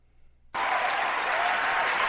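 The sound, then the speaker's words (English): Sudden burst of loud, dense audience applause after a brief near-silence, many hands clapping in a steady, sustained wash with no voices standing out. “Everyone's clapping.”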